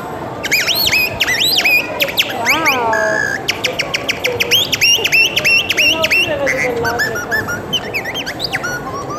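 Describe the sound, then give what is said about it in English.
A blown bird-call whistle made in Germany mimics birdsong with a loud, nonstop run of bright chirps, warbling trills and quick rising tweets, over a faint murmur of background noise. “I know blow, you make it, it comes like sound. It sounds like a bird.”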